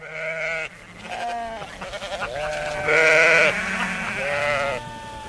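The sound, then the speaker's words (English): A herd of goats bleats in a loud, overlapping chorus, wavering cries piling on top of one another almost without pause, with no voices. “Roach, the SEN mailbag was chock-a-block with letters for you from a herd of goats.”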